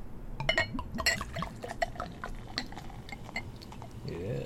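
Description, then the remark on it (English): Coffee Kölsch beer glugs and splashes into a glass, with faint clinks and a rising bubbly fill toward the end; steady pouring with no talking. “So here we go with the top. Oh, my top! And the pour.”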